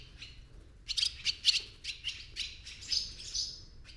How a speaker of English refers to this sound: The swallows dive and chatter about the barn, or squeak and build beneath the eaves.